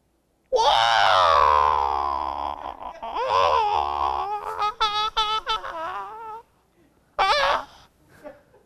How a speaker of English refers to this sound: Now, we have this Hollywood mentality that we look at someone like Bruce Lee, weighing 100 pounds. Yeah, he could scream.